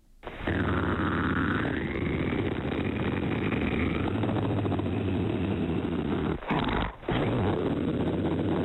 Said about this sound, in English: That is labeled a purr fight. I guess the two of them going back and forth. It was crazy stuff.